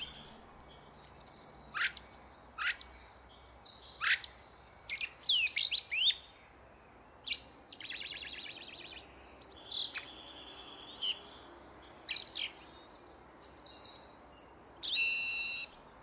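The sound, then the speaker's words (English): A blackbird sings alone in a varied string of phrases: clear whistles, sharp chirps and buzzy, almost electronic-sounding notes, separated by short pauses against a quiet outdoor background. “It was definitely a blackbird.”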